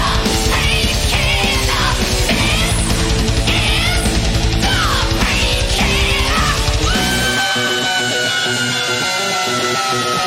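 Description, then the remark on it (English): Loud 1980s heavy metal with pounding drums and thick distorted guitars; about seven seconds in the drums drop out, leaving a sustained ringing chord and a long, slowly sliding high guitar note. “This is peak 80s fucking metal right here.”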